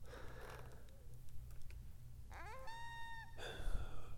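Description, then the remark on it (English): Coyotes calling in the woods at 3:26 a.m.: a rising, wavering howl that levels into a steady high tone, followed at once by another harmonic cry, over a constant low rumble. No one speaks. “My guess is coyotes.”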